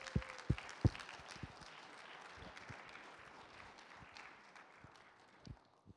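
An audience applauds, a soft, steady wash of many hands clapping with a few sharper claps at the start, thinning out toward the end. No one speaks.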